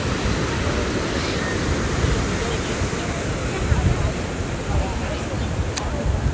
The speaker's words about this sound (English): So I'm going to give you a few more minutes of ocean before I stop the recording.